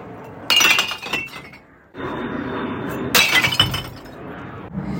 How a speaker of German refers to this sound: Der Regen hat aufgehört und wir sind zum Glascontainer zum Altglas wegbringen gefahren.